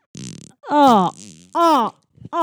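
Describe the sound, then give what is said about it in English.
A short, buzzy raspberry-like fart noise, followed by three loud, wavering groans whose pitch slides up and down. It sounds like a voice imitating a fart rather than a real one. “You farted.”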